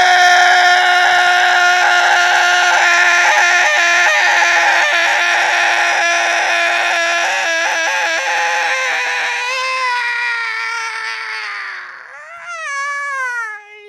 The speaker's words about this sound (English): I was hoping that you would still be screaming while she came down.